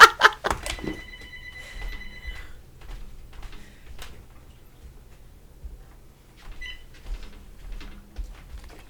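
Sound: landline house phone ringing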